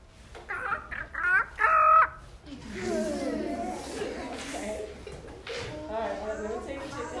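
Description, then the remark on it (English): A child's voice imitates a chicken, clucking to tell the chickens where there's a nice, fresh puddle of water: a few quick, high clucking bursts, followed by several seconds of softer, continued vocal clucking and chatter-like sounds. “I want you to tell the chickens where there's a nice, fresh puddle of water.”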